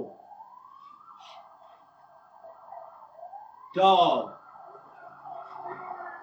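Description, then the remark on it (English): A police siren wails steadily outside, its pitch sweeping upward twice before holding a high tone, interrupted by a brief loud burst of sound partway through. A police officer's voice speaks briefly over it on a loudspeaker. “You hear the police officers like on the mic and shit, right?”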